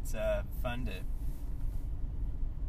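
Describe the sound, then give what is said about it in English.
A steady, low rumble of road noise fills the inside of a moving car from start to finish, with a person's voice briefly speaking over it near the beginning. “It's fun to be in the car with you, man, talking shit and swallowing spit.”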